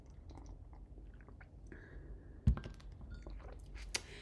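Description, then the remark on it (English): Soft mouth sounds of someone sipping coffee from a mug, followed by a single solid thunk like the mug being set down, then more faint swallowing noises, with no talking. “I'm going to take a big old sip of my coffee.”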